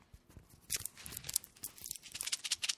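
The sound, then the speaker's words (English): A Laffy Taffy candy wrapper crinkles and crackles in quick, irregular bursts of sharp, bright rustling that carry on for a few seconds, with no one talking over it. “Listen to this candy.”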